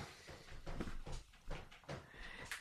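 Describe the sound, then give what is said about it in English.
A fist thumps a hollow plastic box about six times at an uneven pace, each dull, boxy knock distinct, with no voices. “She was punching a plastic box.”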